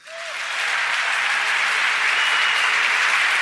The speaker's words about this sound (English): But if you're listening, it does get a massive round of applause. Trust me, you had to be there.